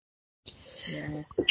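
A single sneeze: a drawn-out voiced build-up followed by a sharp, hissy burst at the end, loud and alone with no talking.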